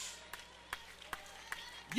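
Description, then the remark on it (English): An audience claps hands in a slow, steady rhythm, roughly one sharp clap every half second, fairly soft over a low murmur, with a louder burst of sound swelling at the very end. The clapping celebrates a woman's victory. “Can we clap with her for her victory? And clap for your victory.”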